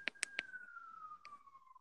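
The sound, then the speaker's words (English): A siren wails outside, one steady tone slowly dropping in pitch as the emergency vehicle passes, with a few sharp clicks near the start and no talking. “And you have to have a siren go off at the end.”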